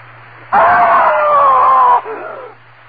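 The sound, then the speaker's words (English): A woman lets out one long, piercing scream lasting over a second, her pitch sliding slightly downward before it cuts off into a fading, echoing tail over a low background hum. “I screamed. I screamed so loudly there was blood in my throat.”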